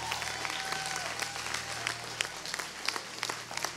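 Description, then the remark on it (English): An audience claps their hands for Jesus in a steady, dense wash of applause, many sharp overlapping claps sustained throughout, with a low hum underneath and no talking. “Give Jesus a great big hand clap all over this place.”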